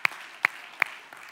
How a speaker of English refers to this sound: And so what an amazing worship set that we just went through, right? All right. Is it just me? Oh, it's phenomenal. You can clap for that. Come on. So good.